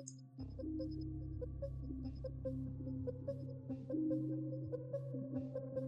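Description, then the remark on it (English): Suspenseful, heavily reverberant music playing from a YouTube video: a deep sustained drone with shifting tonal layers, punctuated by repeated echoing high pings like sonar blips. It plays steadily at moderate volume with no voices. “Oh, I'm hearing music. Like a very suspenseful. A lot of reverb.”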